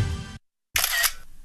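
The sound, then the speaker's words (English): Two crisp camera shutter clicks from a phone taking a selfie with a 910 AM bumper sticker on a car: a short snap, a brief silence, then a brighter, slightly longer mechanical click with a faint ringing edge. “I'm trying to get the perfect selfie of myself and the 910 AM bumper sticker on my car.”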